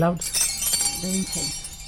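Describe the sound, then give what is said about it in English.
Wind chimes tinkle steadily, a bright shimmer of overlapping high metallic tones ringing without pause, with a low murmur of voices underneath. “I loved the sound that it makes. It is so. We call them the wind chimes.”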